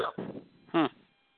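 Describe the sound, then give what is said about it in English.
A single sharp, voiced hiccup bursts out, preceded by a couple of soft breathy vocal sounds and followed by quiet. “Excuse me, I got the hiccups.”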